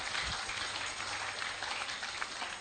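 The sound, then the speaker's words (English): A crowd clapping their hands together, a dense, steady patter of many overlapping claps that holds at an even level for the whole stretch, with no voices on top. “Oh, clap the hands.”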